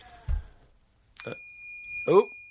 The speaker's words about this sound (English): It's the bell.